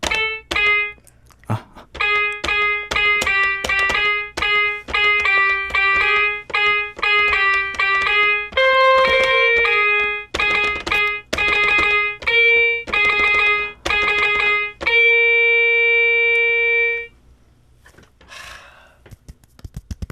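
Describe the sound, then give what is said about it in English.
A guitar named Zuzu plays a quick, rhythmic run of bright, twangy plucked notes and chords, mostly steady strums with a few melodic shifts, ending on one long ringing note that fades out. “Let's get out Zuzu, the guitar, and I'm gonna play it one more time, okay?”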